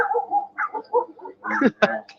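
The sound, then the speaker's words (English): A small dog yaps in a few quick, high-pitched bursts, with a sharper bark near the end and some background voices and outdoor noise around it. “Look, that little doggy jacking away.”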